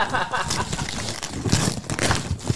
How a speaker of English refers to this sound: Yeah, if you need help tearing the paper